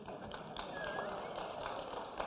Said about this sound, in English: Whew, is this a new thing? Are we going to clap every time I mention Ireland now?